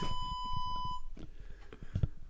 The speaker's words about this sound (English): My phone is doing that on its... It won't stop. If I go back, does it start beeping at me again? Let's try it. Yep, sure does.